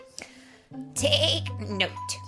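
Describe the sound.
A human voice imitates a goat's bleat: one loud, drawn-out, wavering 'maa' held for nearly a second, after a brief quiet lead-in.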